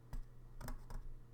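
Three short, dry scratching bursts against drawing paper, irregularly spaced, as a person drawing scratches off something stuck on the paper, with a steady low hum underneath and no talking.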